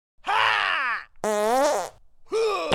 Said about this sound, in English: Hey, was that a kung fu fart? I've heard about those. Some call them kung farts.